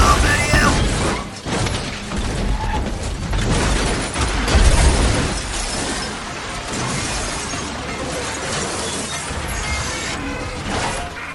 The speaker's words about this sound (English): Tumbling over the road, flipping over and over and over, the roof getting destroyed, the windows smashing.